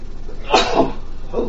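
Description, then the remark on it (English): A single sharp, explosive sneeze bursts out, trailing into a brief breathy tail, followed a moment later by a softer exhale or sniff against quiet background noise; someone sneezing in an apartment after opening the windows and switching off the air conditioner. “And I opened up my windows today in my apartment, shut the air conditioner off, and of course now I'm sneezing like crazy.”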